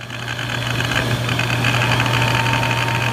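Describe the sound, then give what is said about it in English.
A hard drive clicks away as a computer boots from a Toshiba USB 3.0 device, trying to reach Dapper Drake's boot menu: faint irregular ticks over a steady mechanical whir and low electrical hum that runs evenly throughout, with no voices. “Well, I hear the hard drive clicking away.”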